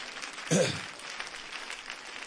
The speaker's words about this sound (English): Clap your hands and give the Lord praise while you're being seated.